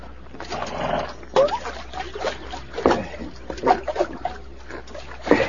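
Canteens being filled at a water hole: a steady wash of gurgling, sloshing water broken by several louder splashes and bubbling bursts, with no talking.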